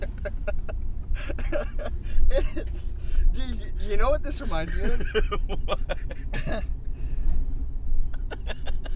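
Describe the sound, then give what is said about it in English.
A car's chassis squeaks and creaks repeatedly while it is driven, over a steady low road rumble, with sharp rattling bursts throughout and a man talking briefly partway through. “Oh, the chassis squeaking.”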